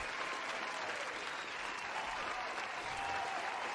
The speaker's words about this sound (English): I got to give a big round of applause. And I got the button here.